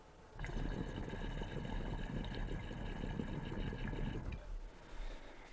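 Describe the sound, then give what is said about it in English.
Water bubbles and gurgles rapidly through a simple glass double bubbler pipe with no nail or slide in it, going up and right back down, for about four seconds, a steady, churning rush that stops abruptly, with no voices. “There's just like water goes up in there and goes right back down.”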